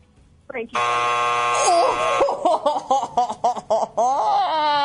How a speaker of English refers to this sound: It was a buzzer. Sorry. We played just like they do on Family Feud. So if you say it when it comes out at the buzzer, a little too late.